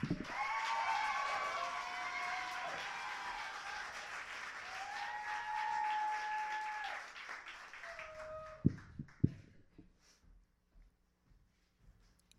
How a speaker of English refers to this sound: And next up, please clap